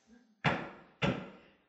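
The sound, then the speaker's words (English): Two solid knocks, evenly spaced about half a second apart, each a sharp hollow thud that rings out briefly before the next, fairly loud with no voices. “Does two knocks mean yes?”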